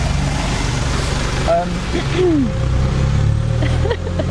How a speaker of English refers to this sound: Bye, bus.